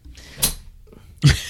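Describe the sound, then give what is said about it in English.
A wooden chair creaks twice under shifting weight, two sharp, strained creaks about a second apart with a quiet pause between them. “As you break the chair further.”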